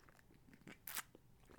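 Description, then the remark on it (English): A quick, quiet sip of tea: one short slurping burst with faint mouth and cup clicks around it, and no talking. “Pause. Quick sip of tea.”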